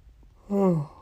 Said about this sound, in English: So I yawned. I just woke up not too long ago.